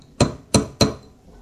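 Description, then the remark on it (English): Three sharp knocks of new stemless glass (not metal) wine glasses banged on a table, quick and fairly loud, each with a brief ringing decay, the last two close together, with no voices. “just to prove it, you're banging them on the table.”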